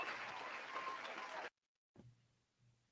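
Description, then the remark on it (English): A burst of canned crowd applause played from an applause button: dense, steady clapping that cuts off abruptly after about a second and a half, followed by a brief silence and a faint low hum. “That was a lot of applause. Can we cut the applause button down?”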